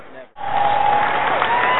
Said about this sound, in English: Looks like he's standing up. The crowd's applauding. It looks like he's going to be okay.